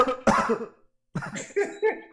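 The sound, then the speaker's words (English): A loud cough bursts out, followed after a brief pause by a rapid string of three or four rougher, raspy coughs with a throaty edge. “That's a cough.”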